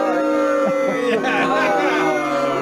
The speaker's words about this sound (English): I love it with the booing.